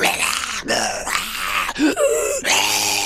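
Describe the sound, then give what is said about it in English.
A voice imitates screeching Morlocks coming through a secret bookcase door, with a series of harsh, strained shrieks and groans in several loud bursts, rising and falling in pitch, with no words spoken. “As you're running, you look back and hear that bookcase sliding, and you can hear the Morlocks coming through, just screeching.”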